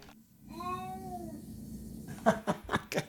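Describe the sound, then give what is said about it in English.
A cat, just over the speaker's shoulder, lets out one drawn-out, wavering meow, followed by a few short, breathy bursts that sound like chuckling. The meow rings clearly against a faint background hum. “you lose the cat reverb.”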